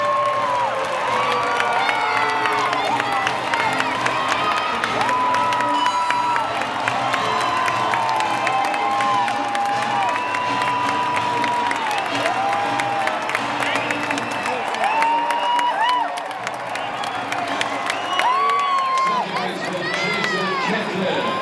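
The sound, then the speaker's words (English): A huge baseball stadium crowd roars in sustained celebration after a home run, loud and continuous for about twenty seconds, with whoops and whistles rising above the dense cheering. “Listen to that crowd.”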